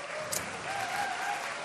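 An audience applauds as a speaker is invited up on stage, with steady, dense clapping that holds at an even level throughout, a continuous wash of many hands with a faint whistle-like tone running underneath.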